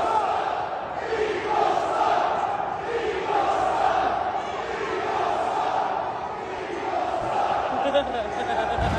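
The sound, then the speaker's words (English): A large stadium crowd of Cowboys fans chants "Eagles suck" in unison after the Cowboys beat the Eagles, a loud, sustained roar of many voices rising and falling in a steady rhythmic cadence throughout, with no single voice standing out. “Stop the Eagles suck chants.”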